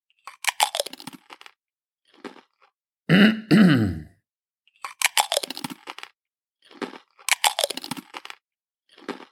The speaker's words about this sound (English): You weren't raised in a barn. Why are you eating like a pig?